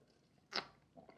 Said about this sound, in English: Unlike the water I just took a sip of, when they got there, there was no water at all.